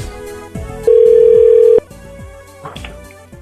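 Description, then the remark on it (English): A phone call connecting: one loud, steady electronic ringing tone lasting about a second, with quieter clicks and a faint background hum before and after it. “Let's try phone number two.”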